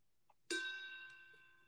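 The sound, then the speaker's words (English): A cup is accidentally struck once with a sharp hit and rings like a small gong, a bright metallic tone with several steady overtones that slowly fade over about a second. “That was my cup. That was cool, though. Crowfoot Jewelry, a little gong.”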